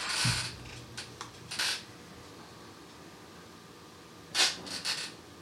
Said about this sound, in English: I can hear your chair. I can hear the chair as well.